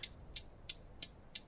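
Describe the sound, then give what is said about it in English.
A Newton's cradle with silver balls clicks back and forth, five crisp metallic taps in a steady, even rhythm, fairly quiet, with no voices. “I watched the silver balls knock back and forth, trying to figure out why my room was suddenly made up.”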